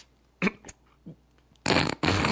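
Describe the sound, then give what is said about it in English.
A few short, sputtering fart noises blast into a microphone from a person standing on a chair, with a couple of brief puffs and then two loud, raspy bursts toward the end, no talking. “You standing on the chair and farting into the microphone is not funny.”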